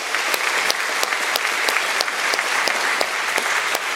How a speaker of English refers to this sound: I am grateful for all the children who attended VBS and led us in worship this morning. Again, let's give them a round of applause.